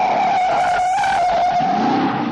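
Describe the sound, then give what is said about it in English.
A loud, sustained screech of skidding tires from a car chase in a 1968 film holds a steady pitch for a couple of seconds over rumbling car noise, continuous, with no talking. “When anyone ever does a top 10 list of car chases on screen, it's always Bullet as number one.”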